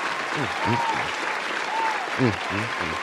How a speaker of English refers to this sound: But on a lighter note, though, and a more brighter note, Popeyes. Ooh! Popeyes. There you go. Round of applause.